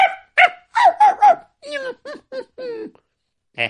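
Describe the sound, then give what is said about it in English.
A human voice imitates tied-up dogs barking: a quick run of short, sharp woofs, then several rougher, growly barks and one final yap after a brief pause, fairly loud. “And of course he tied up the dogs. Ruff, ruff, ruff, ruff, ruff, ruff.”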